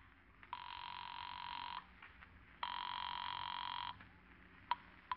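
A telephone rings on the line of a call placed from a phone booth at the Juneau Airport: two long, buzzing rings separated by a short pause, heard faintly as if through a receiver, with no one talking.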